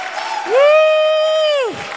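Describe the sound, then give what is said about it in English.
A crowd at a church men's discipleship gathering claps steadily for Jesus while one loud, high-pitched voice lets out a long sustained cheer for about a second, rising above the applause before fading back into the clapping. “Come on, give Jesus a big hand clap. Come on, don't stop now.”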